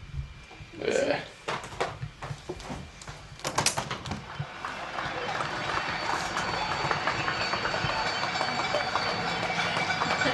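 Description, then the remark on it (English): At eight o'clock, people across the city clap outside for health workers. Scattered, sharp handclaps at first quickly swell into a dense, continuous wash of crowd applause from many people, with a murmur of voices mixed in. “Every day at eight, the whole city like claps for the health workers.”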